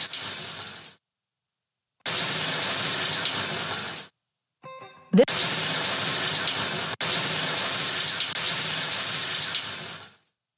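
Shower water runs loudly in several long bursts, cutting off abruptly between them, with a brief squeaky tap-turning sound before the water rushes back on. No one speaks.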